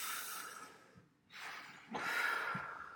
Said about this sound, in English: Let's all do a little breathing.